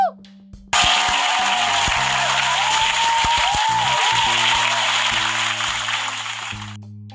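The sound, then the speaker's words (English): A loud burst of applause from a crowd giving a round of applause for God starts abruptly and carries on steadily for about six seconds before fading out. “So let's just give God a round of applause.”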